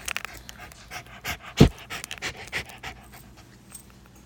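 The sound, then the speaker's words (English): A puppy pants in quick, uneven breathy bursts, with one louder huff near the middle, and no one talking. “You guys want to hear the puppy?”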